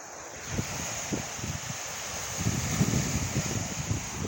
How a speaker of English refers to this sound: I'm at 12th Street Beach in Chicago, Illinois. Listen to the sound of the water. Very beautiful. Very serene.